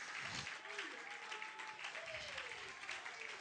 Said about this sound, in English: Clap your hands one more time and just give God praise.